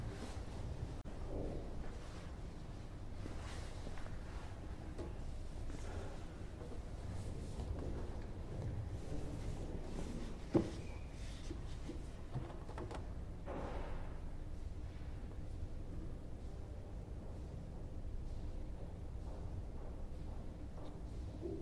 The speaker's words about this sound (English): Can be a bit messy, watery messy, and that's pretty much it. So let's have a look. And then you just got to carry on up until all the water is drained out.